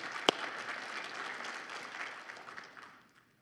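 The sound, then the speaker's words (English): An audience breaks into steady applause to give God the glory, dense clapping from many hands, with one sharp clap standing out near the start before the sound tapers off. “You can clap.”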